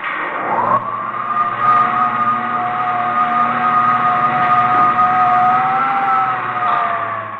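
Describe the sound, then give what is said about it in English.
A loud, steady mechanical drone with layered tonal whines, like spaceship jet dynamos running, rising briefly at the start and then holding an even, humming pitch throughout without any voices. “Jet dynamos driven by the harnessed power of a thousand suns. Listen, Earthman. Listen to them.”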